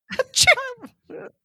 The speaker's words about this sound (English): Achoo!